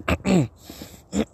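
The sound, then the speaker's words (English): A man clears his throat in a few rough, voiced bursts: two quick grunts close together, a brief pause, then one more harsh rasp, fairly loud with no talking. “Just let me clear my throat real quick.”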